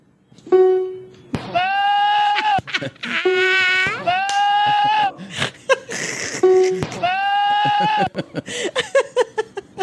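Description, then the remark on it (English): Loud goat bleats arrive in several long, wavering cries, sharply spliced together with abrupt cuts and breathy, choppy bursts in between, ending in a quick stutter of short edited fragments. “So now somebody has cut this where it's the goat version.”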